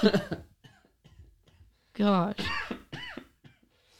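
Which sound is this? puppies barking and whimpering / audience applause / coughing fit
coughing fit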